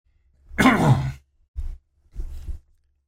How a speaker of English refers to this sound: I'm going to clear my throat a minute.